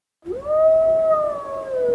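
A single wolf howl rises quickly and then holds a long, steady, mournful tone that sags slightly toward the end. It is loud, with no voices around it.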